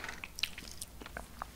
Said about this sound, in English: All right, I'm eating one more. Hope you guys like the ASMR chewing. They're delicious.